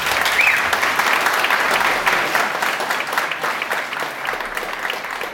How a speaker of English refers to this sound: So we're going to play a little game. So if you think sanctions are working, please clap now. Okay. And if you think they are not working, please clap now.